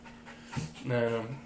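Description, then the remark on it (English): A dog pants in short, breathy bursts while a person's voice murmurs over the last part of the moment, as someone tries to lure the dog into taking off its collar. “On this episode of Lure the Dog to Take Off His Collar.”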